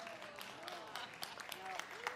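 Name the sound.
scattered applause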